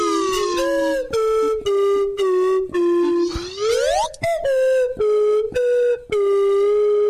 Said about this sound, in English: See, he's actually better on the slide whistle. I am.